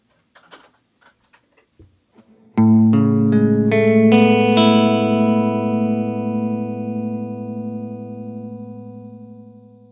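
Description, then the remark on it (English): After a few soft clicks, an electric guitar, fed through a delay into a Big Sky reverb pedal on its hall setting, plays a rising run of chord notes that swell into a lush, spacious hall reverb, the sound hanging and slowly fading for several seconds. “So let's just give you guys the sense of what the hall sounds like.”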